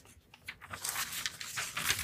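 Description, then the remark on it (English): Paper crinkles and tears in a busy burst, with dense papery crackling that rises after a quieter start and keeps rustling in irregular bursts to the end. “Paper.”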